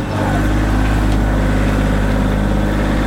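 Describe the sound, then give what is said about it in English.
A tractor engine idles with a steady, low, throbbing rumble that stays loud and constant throughout, while apples are loaded into its bucket to be taken down to cider presses. “Basically, we're filling the buckets up right now with all the apples, and then we're putting them in the bucket of tractor, and he'll take them down to where we have the presses.”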